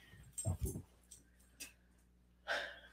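Short bursts of snorting and breathy huffs from dogs, a couple of quick low snuffles followed by scattered softer sniffs and a longer airy exhale.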